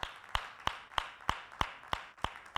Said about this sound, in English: How about we clap our hands one more time for Jesus, shall we? Thank you, Lord.